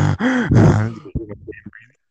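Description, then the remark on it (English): A strained vocal grunt imitating someone constipated, bearing down hard with pitch rising and falling, followed by a few short choppy breaths and sputters before falling silent. “Someone constipated. You know, constipation, no breathing.”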